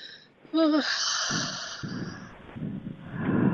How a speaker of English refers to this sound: Take a long stretch. Stretch your arms out and then let yourself have a nice, long, deep yawn.